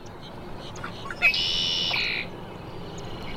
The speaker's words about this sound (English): Red-winged blackbird, Sweetwater Wetlands Park, Gainesville, Florida.